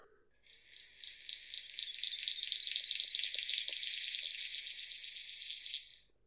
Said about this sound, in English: But when it's courting time, they start whipping them around while bouncing on a vine and singing a song which is described as sounding like radio static. It's terribly romantic. Roll the audio!